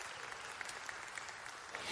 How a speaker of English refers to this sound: I love it when the tithers clap. It's awesome.